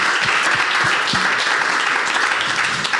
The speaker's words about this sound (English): Hey, let's give all these guys a big round of applause one more time.